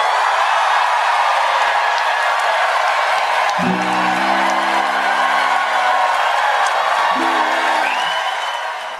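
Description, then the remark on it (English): A late-night talk show studio audience of New Yorkers cheers and applauds loudly and steadily throughout, a dense roar of clapping with a couple of sustained whoops and shouts rising out of the crowd. “Listen to the clapping seals in one of the late night talk shows”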